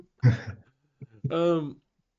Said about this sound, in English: blowing my nose. Just blow your fucking nose. We're not bothered.